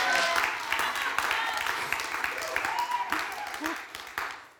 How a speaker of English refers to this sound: So why don't you give her a huge round of applause and welcome her up.